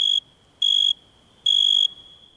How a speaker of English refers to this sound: So, what's that sound? A cricket! Crickets make that chirp chirp sound by rubbing their wings together. But did you know that it's only male crickets that can make that sound?